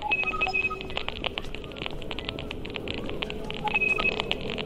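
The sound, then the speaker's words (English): Sonified Wi-Fi signal clicks from the Phantom Terrains project, captured with hearing aids, crackle irregularly throughout; faster clicks mean higher signal strength. Short bursts of high, robotic electronic beeps, the router ID numbers, come at the start and end, all over a steady low background rumble. “Faster clicks mean higher Wi-Fi signal strength. And these robotic beeps are the router ID numbers.”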